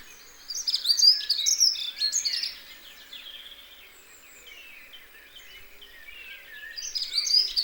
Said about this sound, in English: Its scientific name is Prunella modularis, and that gives a clue because it modulates its song. Its song goes up and down and up and down and up and down, reminiscent of an Irish jig.